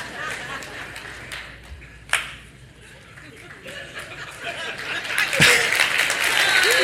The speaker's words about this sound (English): Look, wait, no, I didn't do it for that. I wasn't waiting for applause. I was thinking to myself, I wouldn't clap. Why would I expect anyone else to clap?